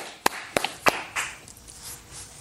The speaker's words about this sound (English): What's up with y'all? Clapping for himself. Beautiful.